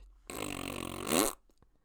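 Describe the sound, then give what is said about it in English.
A single loud, buzzy fart lasting about a second, knocked out of someone by a headbutt to the stomach, its pitch wavering before squeaking upward at the end, with no talking. “Fartknockers will headbutt you in the stomach for $1 and knock that fart right out of you.”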